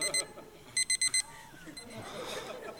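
An electronic alarm clock goes off with sharp, high-pitched beeps in quick bursts, a short pair and then a run of four, fairly loud, before fading into soft background noise.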